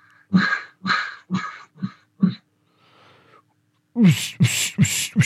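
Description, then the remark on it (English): A duck call blown with voice air gives five buzzy, raspy quacks that taper off, a brief soft breathy pause, then a louder run of four rapid quacks. “One more time. This is voice.”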